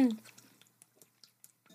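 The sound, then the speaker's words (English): Drinking water: a short voiced hum at the start, then a quiet, irregular run of wet little sips, swallows and mouth clicks. “It's like, drink some water, will ya? I have been.”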